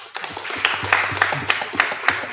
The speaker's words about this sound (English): So by a round of applause, I want to hear. Mike Trout, clap.